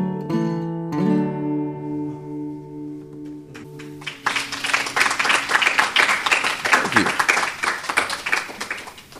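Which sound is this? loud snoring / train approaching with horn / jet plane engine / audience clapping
audience clapping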